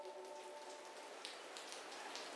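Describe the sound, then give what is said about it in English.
Steady rain falls in a soft, even hiss, with scattered drops pattering on a surface and a faint tonal hum early on. No one speaks. “The problem isn't necessarily the rain itself.”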